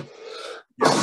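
A single sneeze: a drawn-out, voiced intake breaks off into a brief silence, then a loud, harsh burst of breath finishes it. Nobody speaks.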